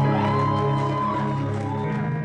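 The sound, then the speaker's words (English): An audience shouts and claps together to celebrate God in a loud, continuous burst of celebration, many voices blending into a dense, steady roar that holds for a couple of seconds. “Somebody celebrate God with a shout and a clap.”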